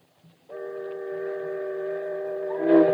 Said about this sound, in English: This is eerie. I just had chills on the back of my neck remembering how I heard this the first time. Those boat whistles are just haunting in this story. I can't even imagine what listening to this like in 1938 was like.